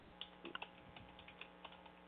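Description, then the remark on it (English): Someone types on a computer keyboard, a run of light, irregular key clicks, fairly quiet, with no talking over them. “I just got busted typing.”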